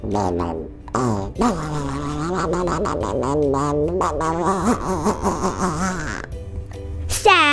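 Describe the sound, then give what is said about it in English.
A voice imitates a sad duck with a long run of drawn-out, wavering, nasal quacks that slide up and down in pitch over a low steady hum, ending on a brief rising squeak. “Guess how this duck feels. Quack quack.”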